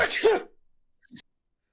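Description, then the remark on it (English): A single sharp, explosive sneeze bursts out and quickly fades, followed about a second later by a brief, quieter sniff-like sound. “Bless you. Is there a third one?”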